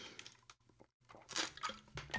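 Quiet wet sipping and slurping of water, a few short liquid gulps and mouth sounds with a brief pause in the middle, heard alone with no talking.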